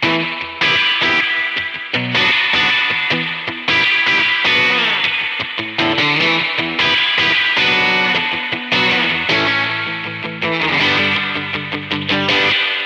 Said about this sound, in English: This reverb tail with the distortion and this frequency change, then this is really authentic.